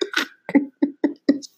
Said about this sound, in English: Damn, the coughing made you lose your train of thought. No, seriously. Like, I cough so hard. I'm concerned.